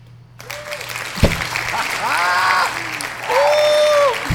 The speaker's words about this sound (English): Y'all gotta clap it up though, like at the same time.